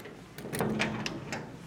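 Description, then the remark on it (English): A run of sharp metallic clicks and clunks, like a key turning in a lock and a latch releasing, followed by a door being eased open, fairly quiet; a man unlocking the door of the Museum of Memories down a tiny alleyway. “unlocks a door to the past.”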